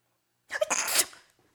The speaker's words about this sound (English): Did you hear that? That ugly chair just sneezed. Yeah, maybe that ugly chair's a cold.